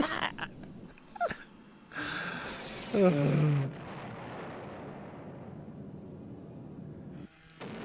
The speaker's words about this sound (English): Well, there's a lot of explosions going on now, and believe it or not, for something that's supposed to be action oriented, this really is quite boring.